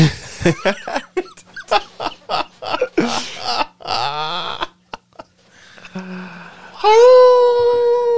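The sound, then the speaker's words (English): After a stretch of choppy laughing and vocal noises, a person lets out a loud, sustained, rising howl, imitating a werewolf. “You spread their ass cheeks, exposing yourself to their full moon, and you throw back your head and let out a howl.”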